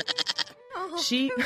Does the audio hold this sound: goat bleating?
yes